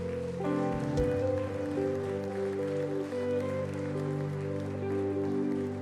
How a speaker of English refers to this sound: Come on. Come on and give Jesus a hand clap of praise.